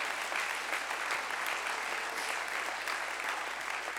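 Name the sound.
audience clapping hands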